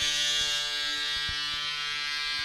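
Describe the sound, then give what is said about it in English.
A loud, steady, buzzing tugboat horn blast holds one low, rich tone for the full length, with a few faint knocks underneath. No one speaks. “That's really loud. A tugboat horn.”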